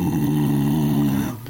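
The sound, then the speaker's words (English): A person imitates the long, low growl of a light brown bull mastiff: one sustained, rumbling snarl lasting over a second, fairly loud, with a slight wavering throb before it cuts off. “And he's making like a long growl, you know, like...”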